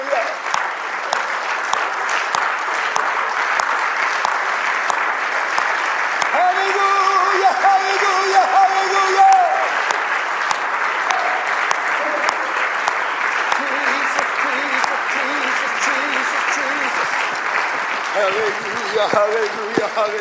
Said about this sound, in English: Let's stand and clap our hands for heaven, shall we? Hallelujah, hallelujah, hallelujah.